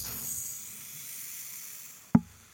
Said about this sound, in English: What was that? That's my gold sand timer.